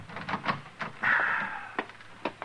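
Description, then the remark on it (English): An unlocked door opens as someone comes in, with a drawn-out creak of nearly a second, set among a few sharp knocks and clicks of the latch and handle, fairly quiet. “Oh, Chester, stop the racket and come on in. The door's unlocked.”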